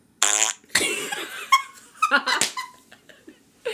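A series of loud, sputtering fart noises, several bursts with buzzy, squeaky tones of varying pitch, coming in quick irregular succession with no talking.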